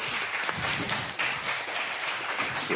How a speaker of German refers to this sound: Danke nochmal, Manga. Applaus.